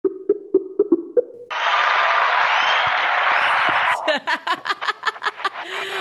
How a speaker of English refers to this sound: Wow, it's nice to get a cheer every time I pick up the phone. Apparently your fans are here too. Wow, that is some positive reinforcement.